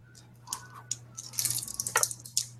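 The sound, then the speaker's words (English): Dice rolling and clattering: a few scattered clicks, then a quick burst of bright, rapid rattling taps that settles into a couple of final knocks, over a low steady hum. My Little Pony dice are being rolled for a brains roll. “Like, okay, by the way, everybody do a brains roll.”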